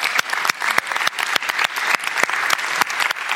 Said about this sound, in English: Will you all just join me in just giving a clap for these people?